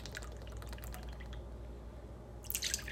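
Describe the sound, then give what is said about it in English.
Half a cup of coconut milk pours softly into a smaller dish, a faint liquid trickle with scattered drips, swelling into a brief louder splashing gurgle at the end. No one speaks. “All right, so pouring in just a half a cup.”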